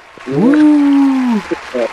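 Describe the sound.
Garbled, underwater-sounding audio from a caller's Boost Mobile phone: a warbling, voice-like tone rises and holds for about a second, then breaks into a couple of short blurbled bursts over a hissy background.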